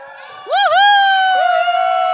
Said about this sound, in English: And every time we cheer on Esther and Mordecai, we are going to give them a cheer. What kind of cheer should we give them?